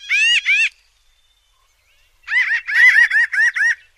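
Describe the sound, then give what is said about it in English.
Pinyon jay, a small bird of the crow family, calls: two quick nasal, harmonic notes, a pause, then a longer burst of about seven or eight rapid, laughing calls, clear with no talking. “Pinyon jays are smart, social birds, and their calls sound like laughing in the woods.”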